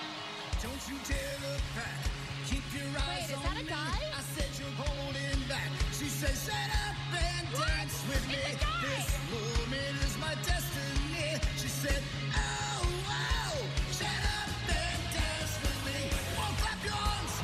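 A solo voice belts the pop song over a loud, driving backing track with a steady pulsing bass line and busy drums, the vocal sliding and strained in places.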